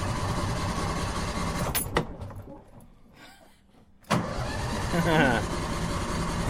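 A car engine idles with a steady, low rumble that drops away for a couple of seconds in the middle, then kicks back in loudly and settles into an even hum.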